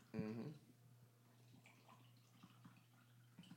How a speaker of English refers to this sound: So it's basically with nitro beers or nitro cans, you want to do a hard pour. Yep. Just kind of just hit it real hard. Let it fucking aerate.